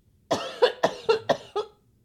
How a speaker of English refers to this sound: Hold on. Welcome to the COVID cough. It just doesn't go away.